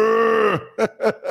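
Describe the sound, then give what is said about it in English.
A man's voice lets out a long, low, droning moo that drops off at the end, then three short, punchy moo-like grunts in quick succession, fairly loud. “it ain't just that moaning and groaning and the ugly faces you make when you're on top of her, looking like you being electrocuted and making cow noises.”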